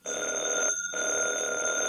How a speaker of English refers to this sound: did that phone ring? Yes.